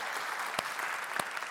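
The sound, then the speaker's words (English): The Harvest audience claps steadily for the worship team as it heads back to the green room, a dense, even wash of hand claps with a couple of sharper, louder claps standing out briefly; no one speaks over it. “Can you give the worship team a round of applause as they head back to the green room?”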